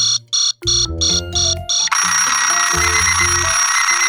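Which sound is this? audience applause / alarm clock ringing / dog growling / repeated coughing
alarm clock ringing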